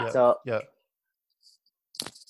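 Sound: dog barking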